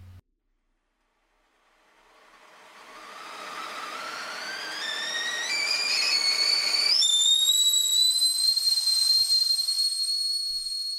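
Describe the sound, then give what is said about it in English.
A kettle comes to the boil, starting as a rising hiss that turns into a whistle climbing in pitch, then settling into a loud, steady, shrill tone. No one speaks. “Talking things through should help, so have a seat, and I'll put the kettle on.”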